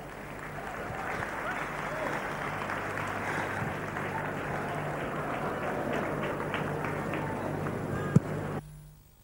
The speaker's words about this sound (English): Please clap for our gentlemen.